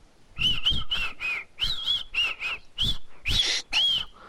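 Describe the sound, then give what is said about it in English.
A person whistles a song's melody, a string of clear, bright pitched notes sliding up and down in phrases, with short breaths between phrases and no talking. “No, I can whistle, like, the song.”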